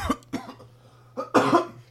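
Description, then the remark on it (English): A short series of harsh coughs: two quick bursts, a pause, then a louder, longer hacking cough at the end, with no talking. “Guy made me cough.”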